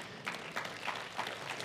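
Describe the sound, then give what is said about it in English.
An audience breaks into applause, a steady wash of many hands clapping at an even, moderate level for a couple of seconds, with no one speaking over it. “Yeah, that's worth an applause.”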